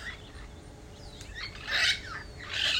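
Several birds chirp and twitter in quick, overlapping bursts, heard from under a tree, the calls growing louder near the end, set against a faint steady outdoor hum with no talking.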